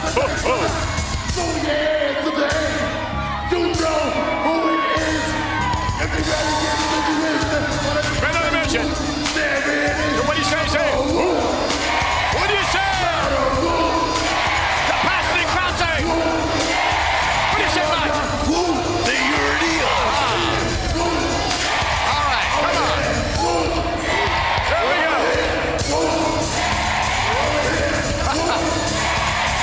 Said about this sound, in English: Crowd are finally alive here, getting involved with Men on a Mission. Men on a Mission, very popular at this time in the WWF.